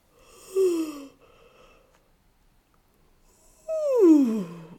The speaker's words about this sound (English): See if you can find some space between your ribs by reaching up on one side and yawning. Oh, and the other.